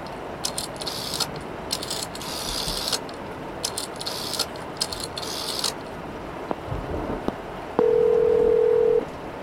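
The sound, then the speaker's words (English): In a phone booth in the rain, a telephone dial tone hums steadily for about a second near the end, after a stretch of clicks and scraping handling noises over a constant hiss of background noise. “Dad's gonna make a quick call, okay?”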